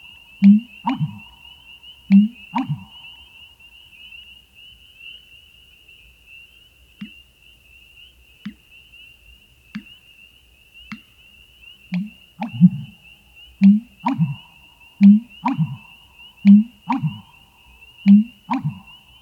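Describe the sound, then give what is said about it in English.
A male marsh bird living in dense reeds gives deep, low-pitched breeding-season calls in short repeated bursts, loud, pausing midway, while a steady high insect-like whine drones underneath throughout. “Because they live in such dense vegetation, they use lower frequency call, which will carry further through the reeds, than higher pitched sounds.”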